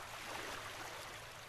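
Waves of the warm Pacific Ocean wash gently onto a tropical white sandy beach with palm trees in a steady, soft hiss of surf, continuous and fairly quiet, with no voices.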